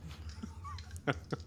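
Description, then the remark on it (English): A quiet sip of scotch from a glass, with two short wet mouth sounds near the end over a low steady background hum. No one speaks. “I just took a sip of my drink just then.”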